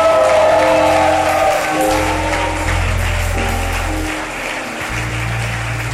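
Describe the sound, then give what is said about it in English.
A church audience applauds steadily for people going back to their seats after being blessed, a dense wash of clapping, while sustained keyboard or organ chords play underneath for the full stretch. “Yes, clap for them as they go back to their seats.”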